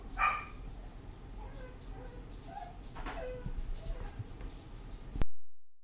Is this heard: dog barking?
yes